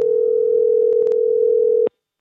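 A steady, fairly loud electronic telephone ringing tone of an outgoing call to the Saint-Sulpice Seminary in Old Montreal sounds for about two seconds and then cuts off abruptly, with a few faint clicks partway through and no voices.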